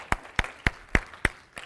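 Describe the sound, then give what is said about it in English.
Six sharp, evenly spaced hand claps from an audience in a steady rhythm, fairly loud and crisp, with no talking over them. “And yeah, clap for her.”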